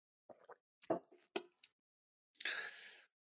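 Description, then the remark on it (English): Someone sips Freedom Cacao from a cup: a few short, wet slurping sounds, followed by a breathy, satisfied exhale. No talking. “But one last thing I want to share as I take a sip of my cacao”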